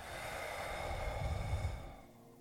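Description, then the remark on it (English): A long, deep breath pushed out through the mouth during a breathing exercise, a soft breathy rush lasting about two seconds before trailing off into quiet. Fairly gentle, with no talking. “And exhale.”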